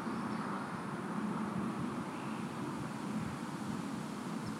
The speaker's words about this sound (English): I'm sorry for the quietness, unless you like birds and whatever noises, cars passing by. I mean, here, listen to what outside sounds like.